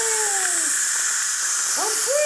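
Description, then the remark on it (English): A pressure cooker of soup has its pressure let out, venting steam in a loud, steady hiss that fills the whole clip, with a few faint whistling tones gliding downward and then curving back up over it. “I'm gonna let this pressure out on this soup.”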